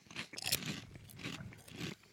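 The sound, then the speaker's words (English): Loud, crisp crunching of Flamin' Hot Lay's kettle cooked potato chips being chewed, with several bright, crackly bursts in an uneven rhythm and no talking. “Because now that I eat a few more, that Flamin' Hot powder, it leaves a little bit of a residue.”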